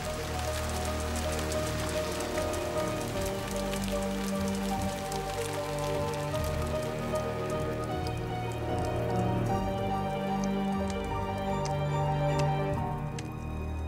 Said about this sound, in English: Acid rain poured from the sky, burning those that had managed to survive till then.